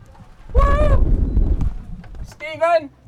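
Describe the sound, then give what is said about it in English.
A wolf whistle in two loud bursts: a bright rising note, a short pause, then a second sweeping note, with a low background rumble underneath. “Are you wolf whistling at me?”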